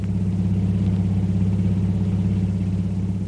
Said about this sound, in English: An hour or two later, a long, powerful car twists its way through the winding streets of Singapore's waterfront. Kolu is at the wheel, and Jungle Jim is at his side.